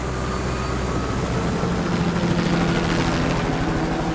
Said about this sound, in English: All I could hear was the whir of the engine going away. The helicopter was gone.